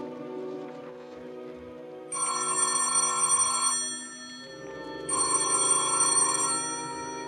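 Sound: telephone ringing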